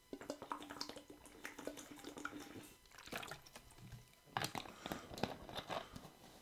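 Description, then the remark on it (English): Close, quiet sipping from a drink, with small wet slurps, swallows and crinkly handling noises scattered across a few seconds and no talking. “Hold on, let me have a sip.”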